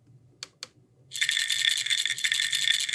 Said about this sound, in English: Right, the sound of the pill bottle kind of cues medication in your head